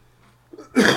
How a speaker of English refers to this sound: It's a cough. Well, so he wanted to cough.